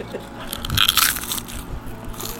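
Crisp crunching of chips being bitten and chewed in an ASMR recording, a dense burst of crackly crunches that swells in the middle and then settles into quieter chewing.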